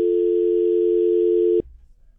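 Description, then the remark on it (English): A steady, loud telephone dial tone drones for about a second and a half after a dropped call, then cuts off abruptly, leaving faint low background noise. “I don't know if that was your phone or what, but we lost you.”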